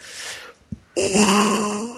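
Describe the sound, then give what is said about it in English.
A person imitates a dying elephant: after a breathy rush and a brief thump, a loud, strained, wavering trumpet-like wail blares and holds for about a second. “I hope it involves the dying elephant sound.”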